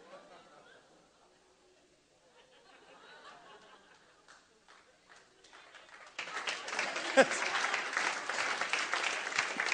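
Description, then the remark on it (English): An audience at a Christian sermon breaks into loud, sustained clapping, a dense wash of many hands that swells suddenly after a few seconds of murmuring voices and scattered chuckles. “I know it's hard to clap with chains on.”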